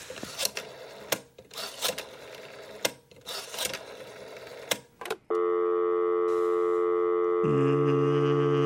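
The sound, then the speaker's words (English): An old rotary dial phone being set up whirs and clicks through several numbers in quick bursts, then a steady electronic phone tone hums continuously, shifting pitch near the end. No one speaks. “Although, before I enter do not disturb mode, I should set up this rotary, this dial phone. You know, I think this thing still works.”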